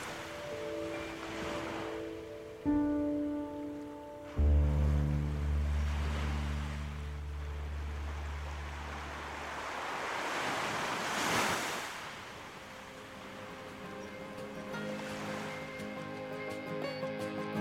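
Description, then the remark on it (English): Ocean waves roll and break against the shore in a steady, hissing wash, swelling to a louder surge midway, with low sustained tones humming underneath and no voices. “Laughing in the sea and all that!”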